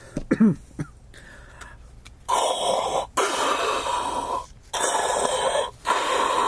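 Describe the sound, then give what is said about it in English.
A voice imitates heavy, rasping mask-style breathing: a few short throaty noises, then several long, loud, hoarse breaths in and out, with brief pauses between. “Do I have to do the heavy breathing every time?”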